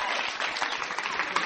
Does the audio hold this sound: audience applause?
yes